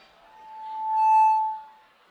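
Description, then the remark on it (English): A single clear, glassy ring swells up, holds bright overtones for a moment and then fades away, sounding alone, as glasses clink in a toast. “All right, so to everybody, we're gonna toast for the good moment, the bad moment, good year, bad year.”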